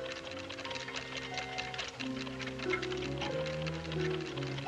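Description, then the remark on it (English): A steady, fairly quick tick of an antique clock repeats throughout, crisp, layered over sustained low musical tones that shift pitch now and then. No one speaks. The lens of a transistorized TV camera unit is hidden in the clock. “Hummert would be astonished if he knew that the lens of a transistorized TV camera unit is hidden in that antique clock.”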